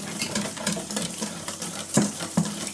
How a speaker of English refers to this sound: So, mixing the powder, and it says to stir for no longer than 60 seconds. Should I have started a timer? Yeah, start a timer. All right. Say how vigorous though, because you can mix it lightly or not so lightly for 60 seconds.